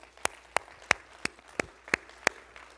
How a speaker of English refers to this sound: How about a little clapping this morning?